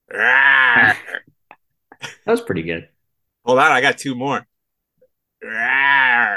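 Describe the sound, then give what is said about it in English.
A voice mimics the MGM lion roar twice at the opening of a show, each a sustained, strained, moaning growl lasting about a second, with a short stretch of talk in between. “I was going to say maybe we need like the MGM roar in the beginning, but I guess that's our roar, right?”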